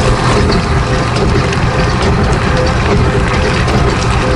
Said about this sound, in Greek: Για πες μας. Το πλυντήριο ρούχο. Το πλυντήριο ρούχο, ναι.